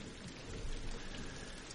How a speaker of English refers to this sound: Oh, it's the rainstorm.